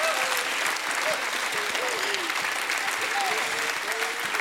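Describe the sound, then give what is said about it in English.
A church audience stands and claps loudly and steadily for God in a dense, continuous wave of applause, with scattered voices calling out and shouting praise underneath throughout. “Somebody stand with me and give God a hand clap and a shout of praise.”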